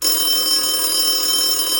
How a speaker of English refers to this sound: Dry up, you two, till I answer the phone.